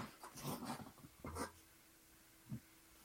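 A dog grumbles and growls in a few low, rough bursts, then a drawn-out, steady whine-like tone follows before one last short grunt.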